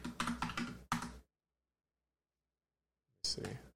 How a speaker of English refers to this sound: Just give me a moment and you can hear the sweet sounds of my keyboard.